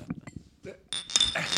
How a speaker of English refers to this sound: Can we get a cheers? Can we get some glass clinking on mic? Cheers to that.